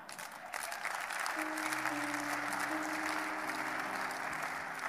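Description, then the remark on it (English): An audience claps steadily and densely for the whole stretch, a continuous wash of applause, while sustained low musical tones, like an organ chord, come in beneath it partway through. “Anybody clapping?”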